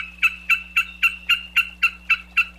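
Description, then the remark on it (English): A Wilson's snipe, a medium-sized shorebird of wet, grassy areas, calls in a rapid, even series of about nine harsh, loud notes, one every quarter second, over a faint steady hum. “today's Talkin' Birds featured feathered friend, an actual bird called Wilson's snipe.”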